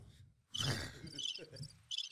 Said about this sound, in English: I'm hearing crickets.